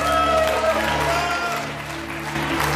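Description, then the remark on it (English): A crowd claps steadily and loudly throughout, giving the Lord a hand, a dense wash of applause layered over sustained, held musical tones. “Give the Lord a hand, everybody.”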